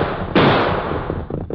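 A single loud gunshot, fired from an ambush, cracks out suddenly, its sharp report trailing off into a long rumbling decay, with no voices heard.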